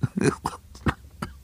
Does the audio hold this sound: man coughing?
yes